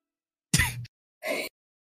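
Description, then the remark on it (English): Someone gives two harsh, raspy coughs about half a second apart, a strained, choking sort of hacking with silence around it and no talking, as the character Dolus chokes on his own spit after inhaling too fast. “He just, like, inhales way too fast, like, trying to heal himself, or he doesn't know what he's doing, just starts choking on his own spit. Okay, try slowly. Very slow. Dolus is coughing, Mara is crawling, Arlashna is just like...”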